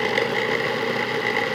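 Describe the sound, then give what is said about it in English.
A food processor pulsing mushrooms for a mushroom bolognese runs in a steady, loud whir with a droning mid-pitched hum and a faint rattle of mushrooms being chopped inside, with no talking over it. “But yeah, like I personally use the food processor because I don't want to chop and I'm lazy.”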